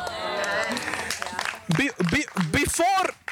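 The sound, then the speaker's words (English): An audience claps loudly in a dense burst for about a second and a half, then a man begins speaking emphatically as the applause fades beneath his voice. “Now we'll clap louder.”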